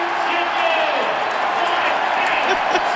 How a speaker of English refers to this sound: And everybody also gets chicken. So that's another reason why they're cheering.